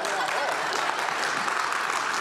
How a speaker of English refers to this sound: Oh, a round of applause. Okay.